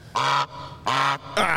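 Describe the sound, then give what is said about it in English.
Three loud, nasal goose honks played as a sound effect in quick succession, each a short blaring call with a brief gap between, with no talking. “could you hit me one time, please, sir, with the honks?”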